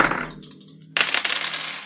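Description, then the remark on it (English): Three ten-sided dice (3d10) clatter and rattle across a hard surface in a quick burst of sharp clicks, pause briefly, then tumble again in a second, louder flurry of tapping. “Okay, so I'm rolling 3d10.”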